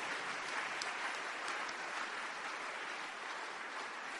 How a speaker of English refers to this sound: Oh, I thought you were clapping for the word of God.